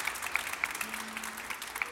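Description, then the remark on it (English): A church audience applauds a nervous young man being introduced, with dense, steady clapping, a bright crackling wash of many hands at moderate volume, with faint murmurs mixed in and no clear speech. “Would you clap your hands for he's nervous as can be?”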